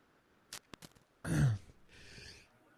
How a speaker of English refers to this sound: Perfect time for me to sneeze. Gee whiz. Sorry about that.